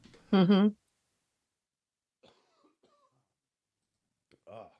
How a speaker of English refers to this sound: Excuse me. I had to cough for a second. I hope I muted myself.